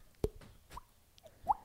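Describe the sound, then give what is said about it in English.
Several hollow, popping plops from a person flicking his own cheek hard, four or five in an uneven rhythm, each a short sharp knock whose pitch jumps higher by the last one, fairly quiet. “He's flicking himself so hard.”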